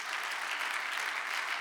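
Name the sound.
audience clapping hands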